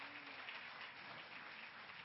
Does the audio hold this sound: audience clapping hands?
yes